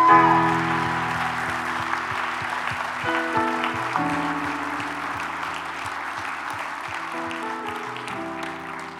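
An audience claps to the Lord, steadily and loudly, many hands blending into a dense patter, over sustained organ or keyboard chords that shift every couple of seconds. No one speaks.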